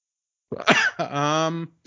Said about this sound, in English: Sorry, I'm coughing from my hookah.